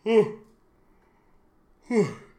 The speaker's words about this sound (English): I really tried to talk through that yawn, and I'm sure that sounded terrible.